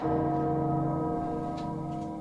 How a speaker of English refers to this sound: The bell tolls for us all.